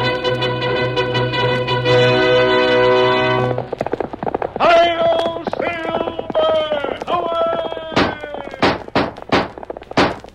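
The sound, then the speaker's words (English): A brassy musical fanfare gives way to the Lone Ranger's horse Silver galloping, its hoofbeats pounding in a quick, steady rhythm, loud, with a voice calling out over them before the hooves sound alone. “Fiery horse with the speed of light, a cloud of dust, and a hearty Hail Silver, the Lone Ranger.”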